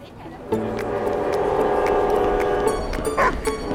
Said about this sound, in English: Slow down, Molly. The Denali train station is busy. I don't want to miss the train to Anchorage.